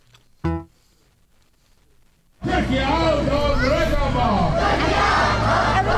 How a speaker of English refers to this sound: Against the bleak October drizzle, a crowd of about 50 gathered outside the public gardens to rally for Syrian Kurds. Many were waving banners and flags as they chanted.